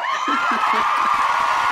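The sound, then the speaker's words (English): A canned round-of-applause sound effect plays on a virtual show: dense, steady clapping from a crowd with faint cheers mixed in, holding at an even, fairly loud level for just under two seconds. “And where's the round of applause?”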